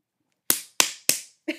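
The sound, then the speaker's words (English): Someone slaps their own buttocks four times: three loud, sharp smacks in a quick, even rhythm, then a slightly softer fourth after a brief pause. No one speaks. “You slapping your own ass there.”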